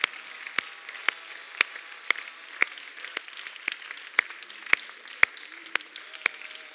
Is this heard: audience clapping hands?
yes